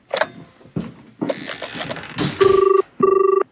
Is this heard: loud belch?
no